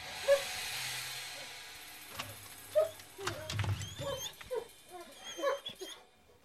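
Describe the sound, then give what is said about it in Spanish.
Excited dogs whimper and yip in short, high-pitched bursts as their owner greets them, scattered unevenly across several seconds, with soft shuffling and movement sounds between the cries. “Luego de saludar a sus perros”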